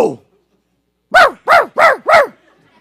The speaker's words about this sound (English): I cannot even make my dumb little dog stop barking when company comes over.